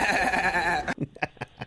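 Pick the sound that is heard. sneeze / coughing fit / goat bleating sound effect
goat bleating sound effect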